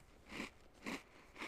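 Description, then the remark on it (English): Crunchy chewing of cookies, three distinct bites about half a second apart, fairly quiet, with no talking. “I'm sorry for my chewing, but I have to eat these cookies because I want to.”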